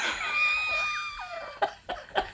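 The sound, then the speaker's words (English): A high, wavering, angry scream with sliding pitch, followed by three short, sharp shouted bursts. No other talking. “But instead, I just like peeled off and I think I kept circling them and like screaming.”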